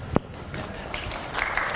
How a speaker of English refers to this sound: So here's the cue. At about 30 seconds, I want you guys to start applauding very softly. See, just practice. Softly, softly. Not so loud that you block out the... Okay.